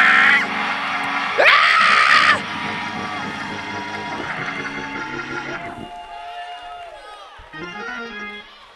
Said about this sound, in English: I need y'all to scream like an old Pentecostal church and say, ah! Ah!